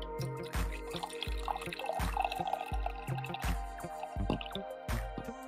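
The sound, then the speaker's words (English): Coffee pours into a cup in a final pour, a steady liquid stream broken by regular gurgling glugs roughly every half second, fairly quiet with no talking. “This coffee. One more pour here. Final pour.”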